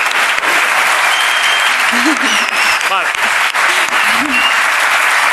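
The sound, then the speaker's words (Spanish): Steady, dense applause from an audience, a continuous wash of clapping that holds at an even, loud level throughout, with faint voices and a brief whistle-like tone sounding through it. “Un aplauso”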